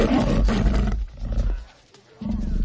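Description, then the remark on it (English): A cougar brought to a party lets out deep, rumbling roars: a long, loud growling stretch, a brief dip into near quiet, then another powerful roar rising again. No talking. “Straight after that, he gets chased by some maniac bought a cougar to a party.”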